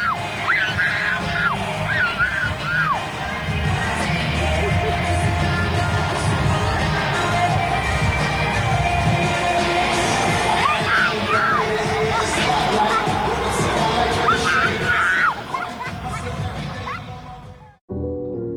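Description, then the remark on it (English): A little girl in a wrestling arena screams excitedly at her wrestling hero, her high-pitched shrieks rising again and again over a loud, continuous cheering crowd full of yells and whoops, before the noise cuts off abruptly near the end. “The sound of that little girl screaming at her hero that she gets to see on TV, that she gets to be influenced by, that she gets to listen to, was amazing.”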